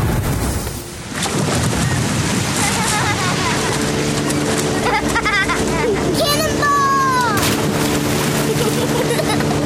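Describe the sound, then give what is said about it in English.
A motorboat engine drones steadily and loudly over a rushing roar, holding a constant hum through most of the stretch with some brief whistling sweeps on top. “There's a problem if you drink and drive a boat.”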